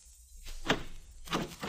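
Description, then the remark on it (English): A stuck door is shoved, giving a short dull thud followed a moment later by a longer rough scraping bump as it budges only about two inches. No voices. “I'm going to try the door.”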